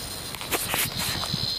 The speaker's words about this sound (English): I've got a clip here for you of a dog interacting with a cicada. That noise, by the way, that's the cicada. What you got there in your mouth, Peggy? It's inside the dog's mouth.